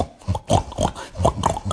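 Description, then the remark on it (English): A voice imitates a pig, grunting out a quick series of about six snorty oinks in an uneven rhythm, fairly loud. “Well, they would get bored, so then I started replacing the sounds of the animals, like pigs were.”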